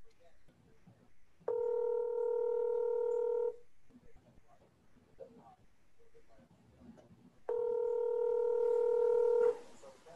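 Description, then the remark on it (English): A phone call rings out unanswered: two long, steady ringback tones about two seconds each, separated by a pause of quiet background murmur, fairly loud. “Let's get this guy on the phone.”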